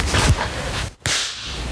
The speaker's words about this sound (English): And then I'm gonna clap.